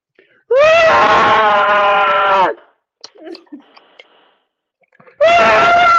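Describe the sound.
A person vocally imitates a Tyrannosaurus Rex drinking a bottle of water: two loud, sustained harmonic screeching roars, about two seconds each, separated by a gap of faint clicks and rustles.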